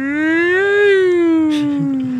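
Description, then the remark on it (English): A single voice imitates a fire truck siren with a loud, sustained wail that slowly rises in pitch, then sinks over about two seconds. It is clear, with no other talking. “Make the sound of the fire truck.”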